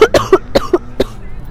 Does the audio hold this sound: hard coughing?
yes